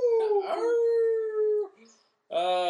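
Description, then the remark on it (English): A wolf howl sound effect marking the end of a show: a long, loud howl that holds steady and then fades, followed by a short silence before a second howl begins at the end. “The Wolf of Show End is coming.”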